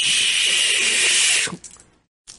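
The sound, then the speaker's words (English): A power tool cuts through a door with a loud, steady, hissing whine for about a second and a half, then stops abruptly. After a short silence it briefly starts again. “Cutting through the door. You hear that sound?”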